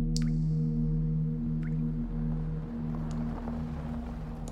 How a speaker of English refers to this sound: a toilet on full display, with the only source of water, a broken faucet that drips, drips, drips at a languid pace.